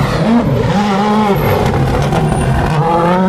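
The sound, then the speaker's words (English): A Citroen rally car's engine roars continuously as it approaches at the Rest and Be Thankful, its pitch rising and dipping with gear changes as it brakes hard for a chicane, loud throughout with no voices. “It'll be one of the Citroens, I think.”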